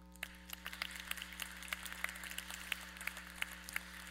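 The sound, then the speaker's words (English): A crowd applauds steadily, many hands clapping in a dense, sustained patter, with a low steady hum beneath and no voices. “You should clap for that.”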